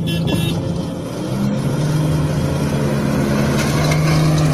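A lawnmower's Briggs & Stratton 600cc engine runs steadily at a low, even idle, its droning hum holding a constant pitch and loudness for the whole stretch, with no voices over it.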